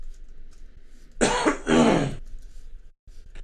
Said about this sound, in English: You're coughing, clearing your throat, and I'm snotting like crazy. I probably got COVID because we went out on a date.